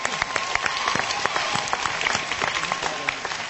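An audience applauds steadily, a dense patter of many hands clapping at an even level for a few seconds, with no voices standing out.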